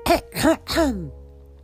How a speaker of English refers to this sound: Clearing her throat, she began to read aloud, her tone soft and certain.